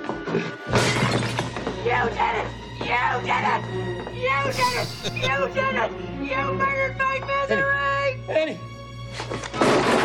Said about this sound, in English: She grabbed the little table that the pot plant was sitting on and she smashed it above the bed. Little wooden one, just smashed it